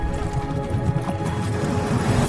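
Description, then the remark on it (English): A dense, rumbling drumming of horse hooves galloping in a steady rapid rhythm, loud and heavy in the low end, with no voices over it. “I heard the sound of thundering hooves,”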